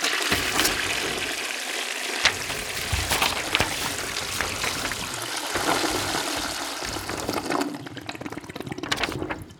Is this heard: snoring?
no